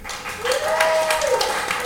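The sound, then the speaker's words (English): An audience applauds steadily, a dense wash of clapping that stays loud throughout, with a drawn-out whooping cheer rising and falling above it midway; a round of applause for game contestants. “We are going to do another round of applause.”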